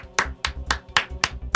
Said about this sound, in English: The slow clap.